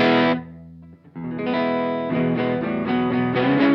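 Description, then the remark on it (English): An electric guitar with a touch of drive, its pickup selector set to the middle position, plays a ringing chord that fades, then strums a steady run of bright, full chords, with no one talking. “Pickups back in the middle.”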